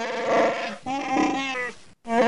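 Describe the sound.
A voice imitates a phone ringtone in three sustained, warbling sung phrases with wavering pitch, fairly loud, with a brief silence before the last short phrase.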